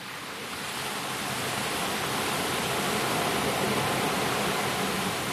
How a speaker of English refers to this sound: See, this one is the ocean, but it's like the perspective is looking out onto the ocean from the beach. I'm not like in the middle in of the actual ocean, right?